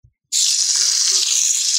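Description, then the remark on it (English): Extruded soy protein with chicken fat around it frying on a grill: a loud, steady, high-pitched sizzle that kicks in abruptly after a brief silence and hisses on evenly, with no one talking. “Actually, you can hear that, right? Something is frying.”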